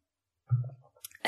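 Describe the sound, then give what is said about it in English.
A short sip: a low, soft gulp followed by faint wet mouth noises, then a quick airy slurp and exhale at the end. No one speaks. “Let me take a quick little sip.”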